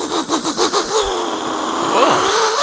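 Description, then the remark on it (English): A voice buzzes out a dirt bike motor impression, starting with a quick run of rhythmic sputtering pulses, then settling into a steady, rising drone that sounds like revving. “It sounded like a shitty motor, like it's like a dirt bike or something, but it sounded good.”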